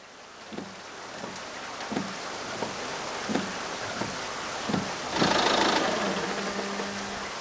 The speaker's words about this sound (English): I'll start my old Ford and be over as fast as it can coast there. It's mostly downhill.